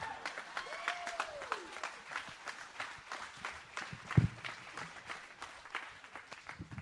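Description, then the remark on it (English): An audience applauds the contestants after a round of a game, clapping steadily in a dense, crackling wash of applause, with a brief whistle-like tone early on and one sharper thump about two-thirds through. “Guys, give them one more round of applause for a great round.”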